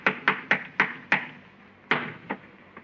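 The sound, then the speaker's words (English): Heavy, muffled footsteps of someone walking on the ceiling above thump overhead: five quick steps in a steady rhythm, a brief pause, then two more. Each footfall lands sharply and fades, with no voices. “Somebody's walking on the ceiling.”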